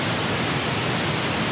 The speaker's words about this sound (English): Now, true white noise sounds very high-pitched to most people because our ears are a little bit more sensitive to that. So an audio engineer might want to balance those tones out a little bit by boosting the bass. This would be known as pink noise.